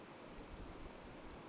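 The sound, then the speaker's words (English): Flowing stream water rushes and burbles in a steady, continuous wash of sound, fairly soft and unbroken, with no voices over it. “This water that we're looking at is terribly abused.”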